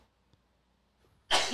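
A single sharp sneeze bursts out loudly near the end after a near-silent pause, with only a faint breathy intake before it.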